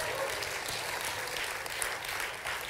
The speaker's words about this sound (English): If that's you, give the Lord a great hand clap.